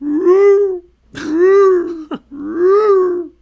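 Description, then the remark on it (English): Three long, loud, voiced heavy breaths isolated from a recording, each a drawn-out groaning exhale with a steady low pitch, separated by brief pauses, with a short sharp catch just before the last one. “So Kate teases this heavy breathing out.”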